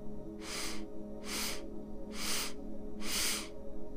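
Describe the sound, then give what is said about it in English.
Four short, sharp inhales through the nose, evenly spaced about a second apart, each a breathy hiss building the breath in steps: a four-count incremental inhale filling the lungs during a retention-breath exercise. Clear, with no talking. “I cannot pronounce the actual name for the types of breath that we're going to be doing, but we're going to be breathing in increments, so it's going to look something like this. Inhale.”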